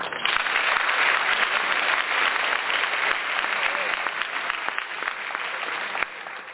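A steady burst of clapping from a crowd, dense and continuous for several seconds before tapering off near the end, with no one speaking over it.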